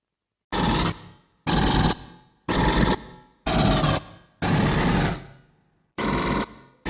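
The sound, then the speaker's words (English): Six loud bursts of rapid sci-fi pulse rifle fire from a film, each about half a second long with a brief ringing tail, separated by short pauses. No one speaks. “so I've got the sound file of that because it still is, no argument, the coolest sounding gun from a film of all still time.”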